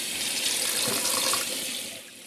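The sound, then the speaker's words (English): A faucet runs steadily into a sink while dishes are washed, a broad hissing splash of water with faint clinks of dishes, holding an even level before easing slightly near the end. “Are you the kind of person who actually likes washing dishes?”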